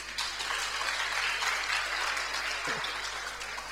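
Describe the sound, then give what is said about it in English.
An audience claps their hands together at a sermon to show they understood, a dense, steady wash of many overlapping claps that holds at an even loudness for a few seconds without pause. “If you understand, clap your hands.”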